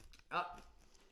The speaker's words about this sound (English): It's quinoa. You've got to open them like that. This looks nice. Give a little review on these. Good crunch.